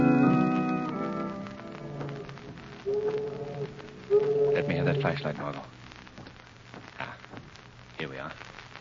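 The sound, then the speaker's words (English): Tide water rushes out to sea beneath old empty tenements built on piles over the river on South Street, in a steady, hissing wash that runs the whole way through, with a few brief, low tonal sounds rising over it early on and midway. “It's the tide rushing out to sea.”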